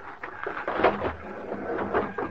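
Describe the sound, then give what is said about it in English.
Heavy, irregular thumps on the door of a railway baggage car, several blows in quick succession, dull-sounding, with a faint hollow rumble between hits. “As soon as the crowd left the depot, we walked down to the car, crawled under it, and pounded on the door on the other side.”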